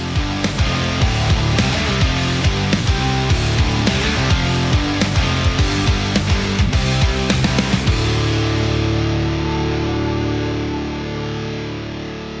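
A loud, driving instrumental music track with heavy distorted guitar and steady punchy drums for about eight seconds, then the beat drops out and sustained chords ring and slowly fade.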